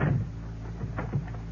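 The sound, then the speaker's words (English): A door shuts with a soft, low thud, followed by a few quick clicks of a lock being turned, with no talking. “You'll excuse me if I lock the door.”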